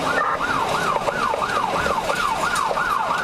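A police car siren wails loudly and continuously, its pitch sweeping up and down in rapid, regular cycles, with a faint hum of traffic underneath.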